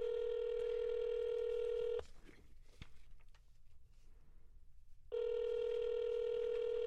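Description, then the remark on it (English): An outgoing phone call from a studio to a phone in Florida rings: two long, steady electronic ringback tones, each about two seconds, separated by a quiet pause of roughly three seconds. The tones are clear and prominent. “Let's hop on the phone”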